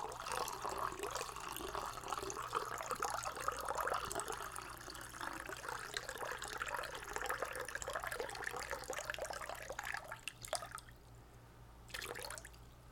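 water running

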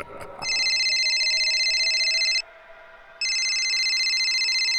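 telephone ringing

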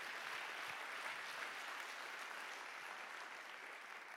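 audience clapping hands

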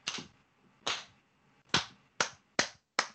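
hand clapping

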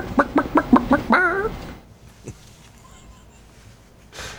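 chicken clucking sound effect

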